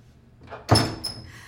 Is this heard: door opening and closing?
yes